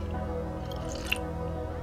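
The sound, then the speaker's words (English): A single quick sip of hot coffee, one brief wet slurp rising sharply out of a steady low background hum. No one speaks. “This one's going to require a sip of coffee, so hang on.”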